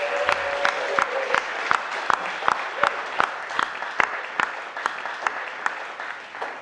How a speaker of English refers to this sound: Let's give Dane a huge round of applause.